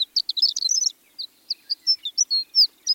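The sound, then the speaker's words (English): A high-pitched, tinkling song of a male horned lark hovering and circling about 100 feet in the air over an open landscape of short grasses: a quick run of twittering notes followed by a string of spaced, thin, rising chirps, clear in an otherwise quiet setting. “A high-pitched, tinkling bird song floats across an open landscape of short grasses.”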